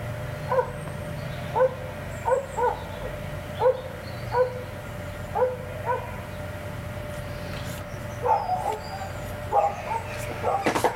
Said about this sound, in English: Sorry, you wouldn't believe this, but there are about 200 sheep walking up our street. I wondered what the noise was.